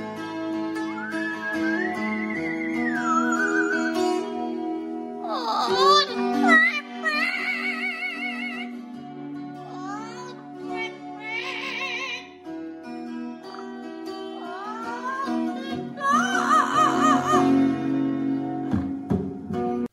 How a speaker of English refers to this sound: This parrot has a right to sing the blues. I thought that was awesome. Oh my God, it's so cute too.